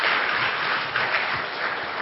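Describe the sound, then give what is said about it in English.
A church audience breaks into steady applause in thanks to God for the pastor and his wife, a dense, even wash of many hands clapping at once, sustained and fairly loud throughout with no voices standing out. “First of all, I want to thank Him for our pastor and his wife, and I think you all can clap and join me in thanking God for our pastor and his wife.”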